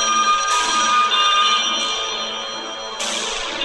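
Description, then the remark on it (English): A telephone rings continuously with a bright, metallic, bell-like tone, steady and fairly loud, with sharper bursts flaring up a few times. No one speaks. “You see the phones unplugged?”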